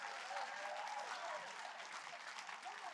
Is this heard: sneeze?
no